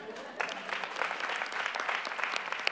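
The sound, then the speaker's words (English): An audience claps steadily during a Christian sermon, a dense patter of many hands at moderate volume, swelling slightly after the start and holding through to the end. “I don't know everybody will clap, but that's okay.”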